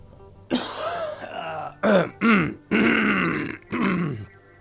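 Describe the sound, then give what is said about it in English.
A loud bout of coughing and throat clearing from a person with a flu: a long rasping clear followed by several harsh, separate coughs and grunts in quick succession, with no talking. “I don't have a cough button.”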